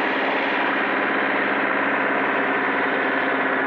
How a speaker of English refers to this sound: why is this guy running his truck all over the loading?